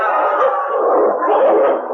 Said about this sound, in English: The animal closest to him wasn't a wolf, it was a dog. And the dog and the leader of the pack were locked in a death struggle.